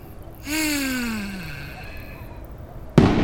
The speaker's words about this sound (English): What the? Fireworks? Oh no! I forgot that when it gets dark on the 4th of July, everyone sets off fireworks! And by climbing up so high, I'm right where all the fireworks are! This is terrible! There's so many fireworks!